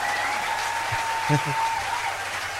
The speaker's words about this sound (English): You get the big applause.